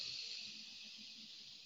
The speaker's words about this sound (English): We breathe in through the nose. We breathe out through the mouth as if we're breathing out a straw. Already, I feel my nervous system changing. Breathe in through the nose.